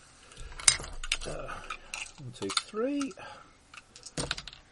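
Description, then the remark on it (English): A handful of dice clatters in quick, irregular bursts of sharp clicks, with a few soft murmured vocal sounds in between, then a final rattle as they're rolled. “if I can find where I've put my very large amount of dice.”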